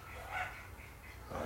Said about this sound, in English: I hear my puppies. Anyway, loving puppy dad just hears the puppies and shifts state that fast.